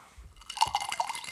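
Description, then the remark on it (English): A short, wet slurping sip from a pint of beer, a quick burst of liquid sounds with a few soft gulps. Fairly quiet and heard on its own, with no talking. “Sip.”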